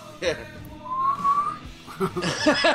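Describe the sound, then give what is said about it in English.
A short, thin whistle, attempted with nuts in the mouth, rises and wavers for about half a second, sounding like a faltering attempt, framed by muffled voiced sounds and a soft chuckle. “I can't whistle, I got nuts in my mouth.”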